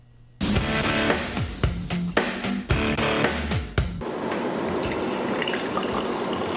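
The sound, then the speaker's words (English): Water pours steadily into a glass in a bubbly gurgle whose pitch rises as it fills, then settles into a continuous splashing stream for several seconds with no voices. A professional water taster in Taiwan is pouring a glass of water to swirl, observe, sniff and taste. “Xia Haojun pours a glass of water, swirls it gently, observes its movement and color, sniffs the aroma, and finally tastes a sip.”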